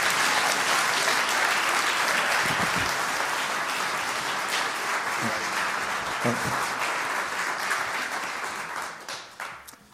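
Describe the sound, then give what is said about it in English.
A large crowd applauds steadily, dense clapping at full volume before tapering off near the end, with a few faint voices mixed in. “Can we just honor them with a real good round of applause and thank you.”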